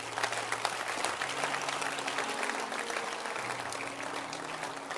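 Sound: church audience clapping hands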